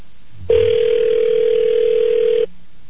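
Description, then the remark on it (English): A fax machine tone comes over a phone line: one steady, unbroken mid-pitched electronic tone with a hissy edge, lasting about two seconds, starting and stopping abruptly with no talking. “That's the fax what machine.”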